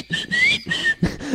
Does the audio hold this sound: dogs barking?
no